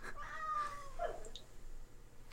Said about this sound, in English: Cat, stop meowing. Can you hear her? Yeah. She's so obnoxious.